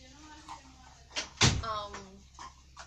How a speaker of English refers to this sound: can you close the door, please? Our studio room door.